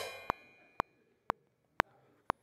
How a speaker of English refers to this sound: I'm sorry to hit your cymbals. But this is Paul's idea of what Jesus is talking about today.